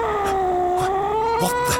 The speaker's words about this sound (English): What's in the bag, General? Nothing, Your Majesty. Just a cat. A cat? Oh, that's my familiar, Rutterkin.